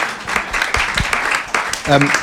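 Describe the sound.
A short burst of audience applause, a dense patter of many hands clapping at moderate loudness, with a few voices murmuring underneath.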